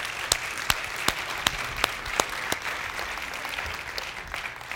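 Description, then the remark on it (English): An audience applauds the fathers in a steady wash of clapping, with a few sharp, louder claps standing out over the dense patter of the crowd. “Let's give the fathers a round of applause here.”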